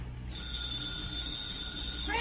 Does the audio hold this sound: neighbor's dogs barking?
no